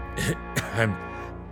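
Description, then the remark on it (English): A loud throat clearing: a raspy burst, a short sharp cough, then a rougher voiced hack that trails off, all within a second and a half. “I'm the cop that needs cough drops.”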